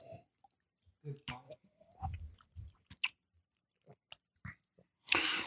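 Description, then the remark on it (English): Quiet sips of whiskey as several people each take a sip together: soft slurps, wet lip smacks and swallowing clicks scattered over a few seconds, ending in a sharp breathy exhale. No one speaks. “I would call this, hold on, let me take another sip. Well, heck, let's all take a sip.”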